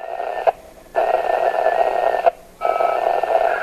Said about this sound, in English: It sounds a lot like a 1990s-era dial-up internet tone, but this system doesn't operate on a fiber network or even an old-fashioned phone line. It's a shortwave radio, sometimes called ham radio.